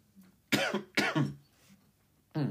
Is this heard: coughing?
yes